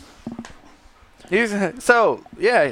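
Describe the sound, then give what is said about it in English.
A dog whimpers and whines in the background in three drawn-out, wavering cries, preceded by a few soft, quick huffs of heavy breathing. “The podcasters don't want to listen to you heavy breathing in the background.”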